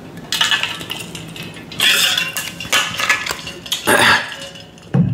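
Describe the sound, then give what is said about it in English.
A glass clinks and rattles several times as it's handled for a drink of water, bright ringing taps in irregular bursts with brief quiet gaps and no one talking. “A sip of water.”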